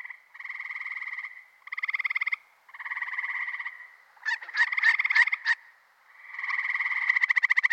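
A chorus of male frogs gives advertisement calls in repeated buzzy, pulsed trills, several long calls alternating with a burst of sharp rapid notes, fairly loud with no voices.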